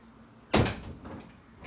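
A door shuts with a single solid thump, followed by a brief rattling settle and quiet room tone.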